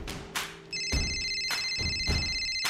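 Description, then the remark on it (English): A phone rings with a bright, high electronic tone that holds steady, punctuated by regular thumping beats about every half second. No one speaks. “Jesus lets it go to voicemail.”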